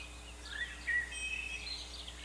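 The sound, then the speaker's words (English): A red-winged blackbird calls, a few scratchy chirps and a brief trill rising over a soft background hiss, with no one talking. “Red wings!”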